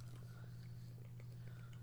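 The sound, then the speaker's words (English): Soft chewing of jelly beans, with faint irregular sticky clicks and mouth sounds over a steady low electrical hum, quiet and continuous throughout. “Everybody got the jelly beans?”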